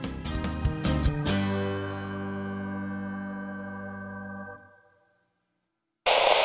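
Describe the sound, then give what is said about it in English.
A few sharp musical chord stabs ring out into a long sustained tone that fades to silence, then a sudden loud burst of harsh static noise cuts in at the very end. “Channel KRT, cut to static.”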